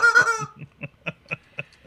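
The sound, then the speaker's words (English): A chicken lets out a squawky, drawn-out cry, then settles into a steady series of short clucks about four times a second, moderately loud with no talking. “I've got the bathrobe bungalow going on here with a chicken.”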